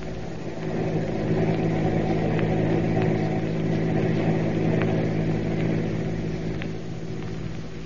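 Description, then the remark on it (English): A car engine drones steadily as the vehicle drives along following a truck, a constant low rumble with a faint rattling hiss on top, moderately loud, with no voices. “Keep on the tail of that truck.”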